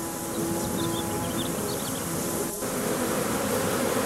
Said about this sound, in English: Billions of bees.